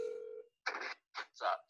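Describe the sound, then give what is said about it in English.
A single ringback tone from a phone call on speaker cuts off abruptly after half a second, followed by a few short muffled bursts of a voice answering over the line. “I was not prepared for you to answer this phone call, so I guess, where are you?”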